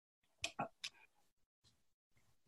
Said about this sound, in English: Sorry. I think that must be their clock. Is that Oh, yes, it is the clock.